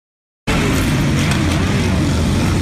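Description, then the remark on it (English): After a brief silence, loud motorcycle engines abruptly rumble in, a dense, steady growl of many bikes from the Llama and Gear Banging Motorcycle Clubs, more than 100 people, idling and revving together as they pull up to a boy's home in Yulee, with no voices. “More than 100 people from Llama and Gear Banging Motorcycle Clubs.”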